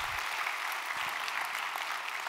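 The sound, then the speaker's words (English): An audience claps in a steady, continuous wash of many hands for about two seconds, dense and even, with no voices over it. “Clap for that.”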